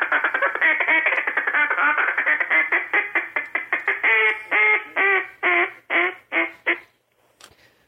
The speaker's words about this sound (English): just having some more fun, teaching us about some duck calling. And folks, I can't say it enough. Listen to them, record it, and copy it.